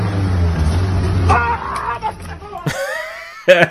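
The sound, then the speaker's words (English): A car engine rumbles low as the vehicle backs up, then a man who has put his elbow toward the car lets out a sudden, loud, exaggerated cry, pretending he has been hit by it although the car never touches him. “His car's backing up. So he puts his elbow towards it like, yeah, hit me.”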